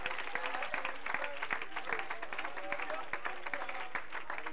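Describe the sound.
An audience claps hands in praise, a dense, steady patter of many claps with bright sharp transients, mixed with a low murmur of voices throughout.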